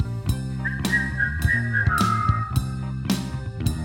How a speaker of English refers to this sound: You know how to whistle, don't you? You just put your lips together. Blow.